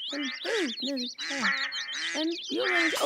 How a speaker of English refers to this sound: There's a duck in the house.